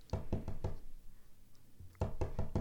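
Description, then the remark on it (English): Light knocking on the door of a shared office: a quick run of three taps, a brief pause, then four more taps in the same steady rhythm, with no voices. “As you put the finishing touches to your last and you hope best strategy, you hear a soft tap at the door.”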